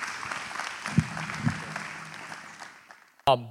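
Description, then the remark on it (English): An audience at Harvest church applauds to welcome a visiting couple, with dense, steady clapping that slowly fades over about three seconds, before a single voice briefly starts speaking. “please give them a round of applause and welcome to Harvest.”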